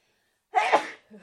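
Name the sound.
sneeze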